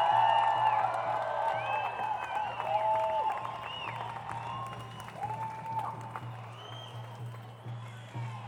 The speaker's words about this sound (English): Here she is, a nurse of over 50 years. Big round of applause.